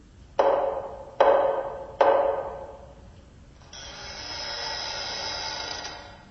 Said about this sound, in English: We walk up to the massive wooden door. I reach for the door knocker in the center, but before I touch it, the knocker knocks all by itself.